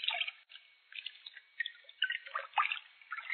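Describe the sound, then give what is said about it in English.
Water sloshes and splashes in irregular bursts as someone steps into a filled bathtub, with small drips and swishes between the louder splashes. “Now, step in. I'll help you. Take care. The water may be hot, and the tub may be slippery.”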